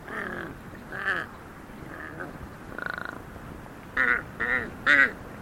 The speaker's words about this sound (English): I remember being startled by the bizarre sounds made by a huge Tibetan crow hopping across a high field.